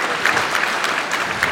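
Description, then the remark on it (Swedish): Sustained applause from an indoor crowd at a table tennis match, a dense steady patter of many hands clapping at moderate loudness with no voices rising above it. “Väldigt kunnig publik på bordtennismatchen.”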